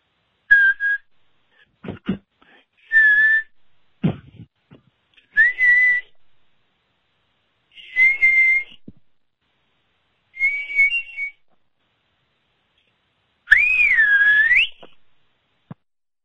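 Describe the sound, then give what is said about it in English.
A caller on the phone whistles a musical scale in short, separate notes that step gradually higher, ending with a longer swooping, warbling note. The whistling is clear, with brief pauses between notes and no talking. “Oh, nice whistles. Ooh, good like scale.”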